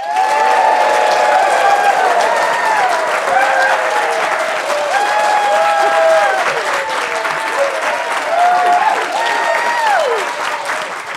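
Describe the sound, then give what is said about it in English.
A large audience in the Clore Lecture Theatre at Imperial College London claps steadily and loudly for about eleven seconds, with whoops, shouts and piercing whistles rising over the dense applause throughout. “We have a wonderful crowd in place in the Clore Lecture Theatre at Imperial College London.”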